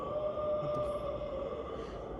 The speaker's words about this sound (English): You'd almost want to say wolves, except they would cheat you. They don't sound like little wolves. They sound like big wolves. Yeah. Direwolves.